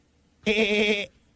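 A single loud goat bleat, lasting just over half a second with a wavering, quavering tone, heard alone.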